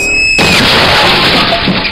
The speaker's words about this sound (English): Off screen, we hear a car horn screeching.